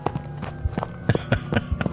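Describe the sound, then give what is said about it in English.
Quick, heavy footsteps pound in a fast, steady rhythm, each impact a sharp thud, growing a bit louder and crisper partway through as the runners close in, with no voices. “I duck behind a shrub, just as footsteps thunder past.”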